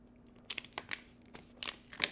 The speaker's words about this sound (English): I don't want them to hear the crinkling of this during the sponsor play. Okay, you put that in. Take out the water bottle making a crinkling noise.